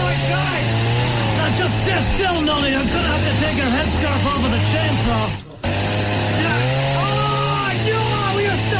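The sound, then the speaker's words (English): A loud chainsaw engine drones and revs, its pitch stepping up and down, while voices talk over it; the noise cuts out briefly before starting again. The chainsaw is used to take off a stuck headscarf. “I'm gonna have to take your headscarf off with a chainsaw.”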